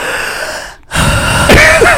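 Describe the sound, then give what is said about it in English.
A loud, exaggerated gasping breath, breathy, with a sharp inhale after a brief pause, then a strained, wheezy rasp toward the end, made by a human voice. “Soundtrack for a horror movie. I'm just breathing.”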